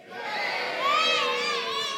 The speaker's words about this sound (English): Yeah, he gets a cheer.